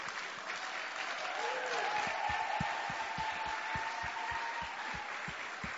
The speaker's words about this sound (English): Why don't you, as they come up, just sort of give them a clap or something and just sort of say, well done.